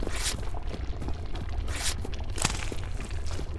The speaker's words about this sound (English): That sounds like a piece of paper being dipped into digestive juices, doesn't it?